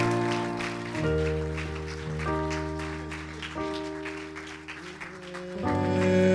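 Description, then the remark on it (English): An audience claps hands in a steady, even rhythm over sustained music with a deep bass and organ-like tones, the clapping lively and continuous throughout. “One more time, let's clap our hands in response.”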